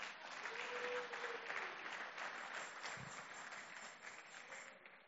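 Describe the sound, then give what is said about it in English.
An audience claps together in a dense, sustained burst of applause that fills the whole clip, with a faint sustained tone in the background and no speech over it. “Follow and clap.”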